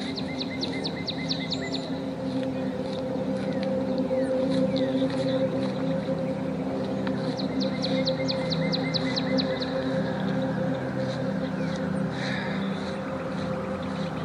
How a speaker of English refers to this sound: The birds are nice here. The sound of the birds.